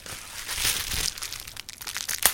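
Bubble wrap being crushed under an elbow, a steady crinkling crackle with a few sharper pops breaking through, especially toward the end. No voices.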